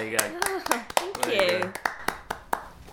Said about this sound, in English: and the other commentators round about him, as he handed over to a colleague at the end of an over, they all applauded him, gave him a standing ovation, so I'm going to give him a place.